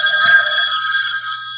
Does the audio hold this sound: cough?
no